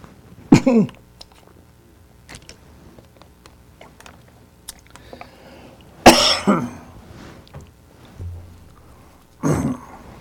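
A person with a lingering cough has three harsh coughing fits spaced a few seconds apart, with throat clearing in between, amid quiet with a few faint ticks and rustles.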